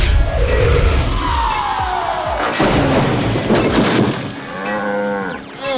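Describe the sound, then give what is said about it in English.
A train crashes through a fence with a loud crash and rumbling impact, followed by a cow's drawn-out moo rising over the debris noise, with a final clattering thud at the end. “Sorry about that, Mr. Cow. I'm gonna fix that fence just as soon as I stop this train that's also Mighty Mila.”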